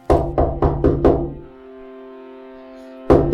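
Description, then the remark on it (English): A man raps on a window pane in the evening: five quick knocks, leaving a faint glassy ring that hangs in the air before one more sharp knock lands after a pause. “But before he can get out a good cry, there's a rapping at the window.”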